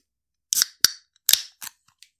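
A can of HOPWTR hop water, classic flavor, being cracked open: a series of sharp metallic clicks and snaps with brief bursts of fizzy hiss, followed by a couple of faint ticks. No one speaks.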